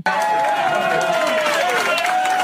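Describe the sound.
A show audience erupts into steady, loud applause for the idea of bringing back the feature act, mixed with cheering and shouting voices, a dense wash of clapping that holds for a couple of seconds.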